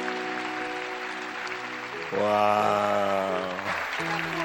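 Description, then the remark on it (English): An audience claps for a friend who has come to the service, a dense, steady wash under sustained keyboard-like tones that step up in pitch partway through, with a single voice briefly exclaiming. “Clap for friend.”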